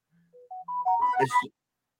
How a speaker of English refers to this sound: Damn, my phone is going nuts here this morning. What is it? It's my new phone. I got a new phone.